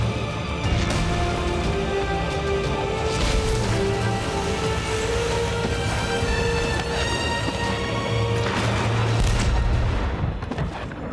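Several heavy booming cannon blasts from a ship in a video game go off at irregular intervals during a storm at sea, over a loud, continuous bed of orchestral game music and crashing noise, with no one talking.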